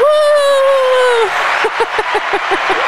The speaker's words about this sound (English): No, throw some applause in there. You threw it in the last take, and we didn't get to hear it.